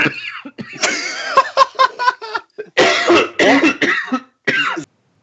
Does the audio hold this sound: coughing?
yes